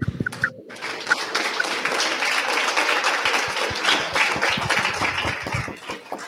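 An audience breaks into applause for a presenter after his talk on sociocracy, a dense, steady wash of many hands clapping that holds fairly loud and even for several seconds with no talking over it.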